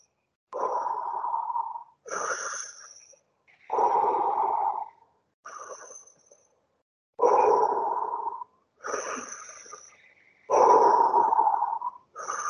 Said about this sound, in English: So start breathing with me like this. 1, 2, 3 on a heavy in-breath. 1, 2, 3 on a heavy out-breath.